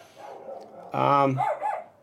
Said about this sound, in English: And there you go, my dog's going crazy.